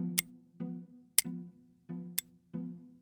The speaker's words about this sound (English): Sometimes I swear I can still hear those tiny, incessant ticks vibrating from my brother's old stopwatch.